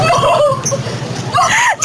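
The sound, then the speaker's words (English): A rooster guarding a villa with a pool clucks and crows loudly, its harsh, rising calls running almost without pause across a couple of seconds. “You can hear the rooster too.”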